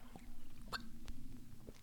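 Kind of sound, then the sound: food or drink, sipping beer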